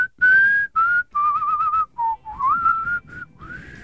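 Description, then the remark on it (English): A person does a tongue whistle, a short, wavering tune of several breathy notes in separate bursts with brief gaps, some sliding up or down in pitch. No one speaks. “I can whistle like this too.”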